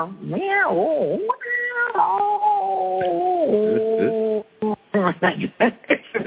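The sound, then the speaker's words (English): A woman voices a long, drawn-out cat meow for a voice looping session, the tone wavering and sliding for several seconds, then breaks into a few short, choppy vocal bursts at the end. “And so I looked, and I realized, oh, well, okay, that's a straight meow kind of, but elongated.”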